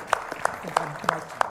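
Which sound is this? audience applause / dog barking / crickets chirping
audience applause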